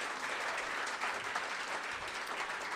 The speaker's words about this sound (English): Well, give that a round of applause. Give that.